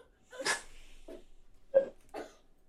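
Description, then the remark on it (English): A dog, Jim, whines, crying because he hasn't eaten in two hours: a snorting huff, then three short, strained whimpering cries spaced about half a second apart, with no one talking. “Jim's over here just crying because he hasn't eaten in 2 hours.”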